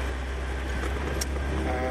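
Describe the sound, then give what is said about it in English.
A steady, droning rumble of road and engine noise from inside a moving inexpensive car, low and continuous with a faint hiss on top and no distinct events. “But also personality, because you can have, I mean, for example, this is not an expensive car, nor was it when it was first made.”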